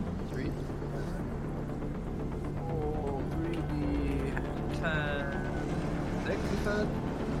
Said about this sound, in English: Yeah, I just love the cars outside my window whenever I'm podcasting now.